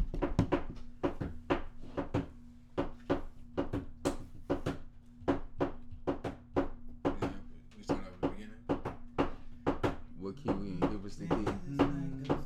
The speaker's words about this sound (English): Right, just bang on the table. Show the drum skills.